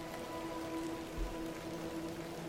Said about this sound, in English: The rain pours down.